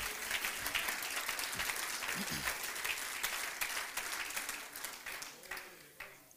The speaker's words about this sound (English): Let's clap our hands to the Lord, can we? Oh, I love you, Jesus.